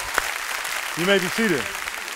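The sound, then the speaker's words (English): An audience at a church service at Rock East County applauds in a steady, dense wash of clapping that lasts throughout, while a single voice briefly calls out over it midway. “Let's give those people a hand.”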